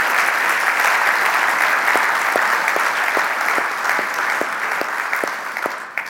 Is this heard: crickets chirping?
no